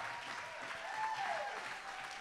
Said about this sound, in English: So if you are from College Station, you came for this week, can you just stand on your feet real quick? We're going to clap for you one more time, then we're going to pray for you.